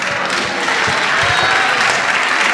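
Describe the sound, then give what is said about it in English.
A church audience claps for the confirmands at a confirmation service, many hands blending into a dense, continuous patter of applause that stays loud and even throughout, with no voices standing out. “Oh, clap for them again.”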